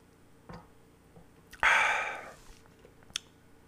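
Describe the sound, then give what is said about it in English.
Someone takes a quick sip of a drink: a faint click, a loud breathy slurp or exhale that fades over about a second, then another small click. No talking. “I can't resist anymore. I have to take a sip.”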